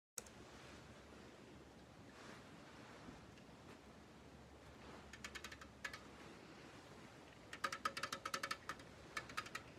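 Crisp fingernail taps from an ASMR-style video click in quick bursts, a short flurry midway and a denser run near the end, over a steady soft hiss. No one speaks.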